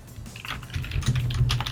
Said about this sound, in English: Stop typing.